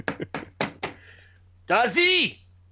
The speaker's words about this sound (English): You know, bang on your door like this.